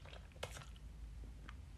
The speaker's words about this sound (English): Let me take a sip because mouth is dry.